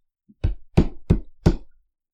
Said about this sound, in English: She approaches one of the houses and knocks on the door.